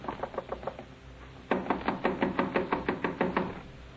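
knocking on a door

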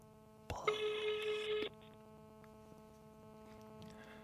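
telephone ringing tone

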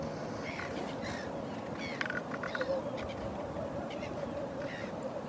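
birds calling

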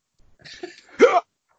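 hiccups

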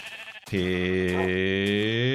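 sheep bleating

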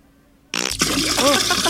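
fart

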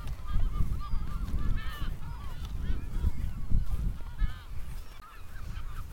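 seabird calls

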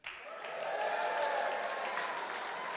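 audience cheering and applauding

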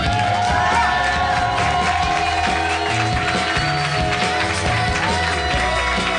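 audience applause and cheering

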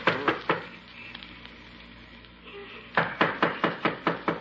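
knocking on a door

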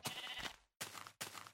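sheep bleating

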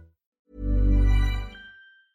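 deep breathing

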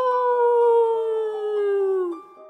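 wolf howling

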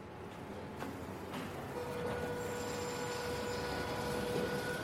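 train travelling on rails

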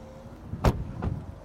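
car door being opened

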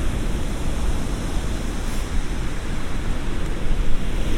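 sea waves

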